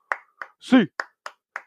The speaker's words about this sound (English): Let's rock and roll. Eight clap time. I know some of you guys don't like my eight claps. We'll get ready. Let's get rocking and rolling. Let's get it out early this time. And 1, 2, 3, 4, 5, 6, 7, 8.